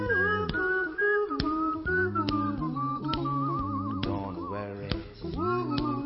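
A person whistles a bouncy, wavering tune over a steady, rhythmic backing with regular percussive beats, clear, with no talking.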